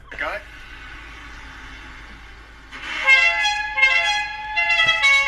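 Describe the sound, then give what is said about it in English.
A bus hooter blares in a series of loud, multi-tone honks, following a few seconds of steady low engine rumble. The blasts come in quick, harsh bursts. “So I just want to just play a quick clip of what the bus is actually sounding like.”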